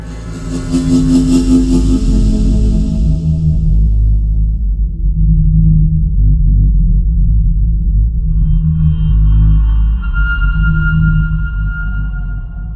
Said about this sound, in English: Guitar Designed Volume 2 by 344 Audio uses raw acoustic guitar recordings to design various futuristic and horrifying sound effects.